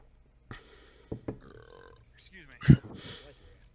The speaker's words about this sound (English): Burp again.